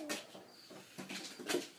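Soft, short clucking calls from chickens being fed, several brief bursts spaced unevenly, fairly quiet with a slight low hum underneath and no voices.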